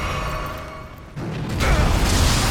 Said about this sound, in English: The ground under us is a little bit exploding with lightning.